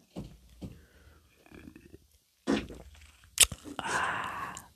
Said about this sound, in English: You farted during my ASMR. And that was deliberate because you even lifted up your butt cheek to give it room.